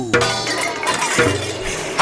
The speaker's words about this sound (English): Knights, spatulas at the ready! Use your spatula to bang on these pots and pans as loud as you can to scare off our competition. Ready? And go!